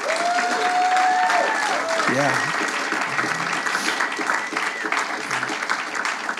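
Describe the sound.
An audience in a church claps steadily in dense, sustained applause, with scattered voices and a brief cheer rising over the clapping before it begins to thin out.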